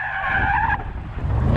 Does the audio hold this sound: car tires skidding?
yes